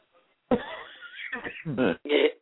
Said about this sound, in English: Excuse me. I'm over my cold, but now I still have a little bit of a cough.